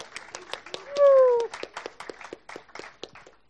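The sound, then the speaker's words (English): A crowd claps in a steady patter of sharp, overlapping hand claps, with a single voice letting out a short falling whoop early on before the clapping carries on, as a youth member comes up to speak. “So, big round of applause, please.”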